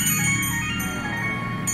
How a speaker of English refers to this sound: Ring the little silver bell there, lad.